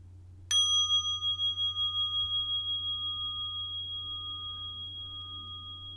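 A single mindfulness bell is invited (struck) once, ringing out with a bright metallic tone that pulses gently and fades slowly over several seconds above a low steady hum.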